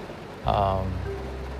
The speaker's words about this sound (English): It's raining right now. I'm in the car. It's lightning too.